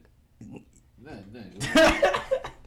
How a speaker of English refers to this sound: Wasn't a laugh. That was a cough.